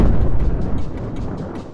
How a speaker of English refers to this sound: About 200 years ago, in the spring of 1815, one of the largest volcanic eruptions on record happened at Mount Tambora in Southeast Asia.